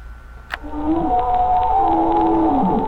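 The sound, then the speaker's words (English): Whale song played as an answering machine greeting: long, sliding whale calls rise and fall in low, mournful tones, layered with higher sustained moans over a faint hiss, with a brief click near the start and no one speaking. “Please leave a message after the pretentious whale song.”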